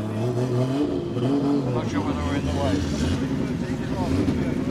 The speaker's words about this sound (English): We thought it was a little quiet yesterday, so we fitted the open pipes for today, because the sound of it is also part of the rich experience.